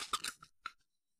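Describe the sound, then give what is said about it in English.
A drink can being opened: a cluster of crackly, fizzing bursts followed by a few sharp metallic clicks, quiet and over in about a second, with no one talking. “Here's the can. Here's the pull tab. Here's the pop. Here's the hiss.”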